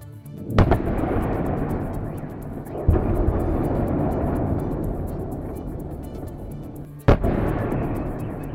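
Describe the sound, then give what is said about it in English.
Three heavy explosions go off at uneven intervals in Kyiv, Ukraine, at about 5 a.m. local time, from either a Russian missile strike or Ukrainian air defense systems, each a sharp crack followed by a long, rolling rumble that echoes and lingers between buildings, loud, with no voices. “Several loud explosions have been heard in the Ukrainian capital Kyiv this morning.”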